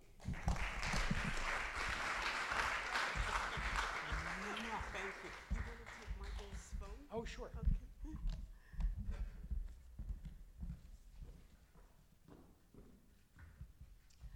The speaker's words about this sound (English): Thank you. Thank you for that applause, everyone. I love that sound. Thank you. It makes me feel all dark and lovely.